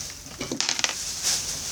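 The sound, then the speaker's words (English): Crinkly rustling of a plastic bag being pawed at by a cat, a burst of sharp crackles in the middle followed by softer scratchy shuffling against a steady background hiss. “She's rustling something.”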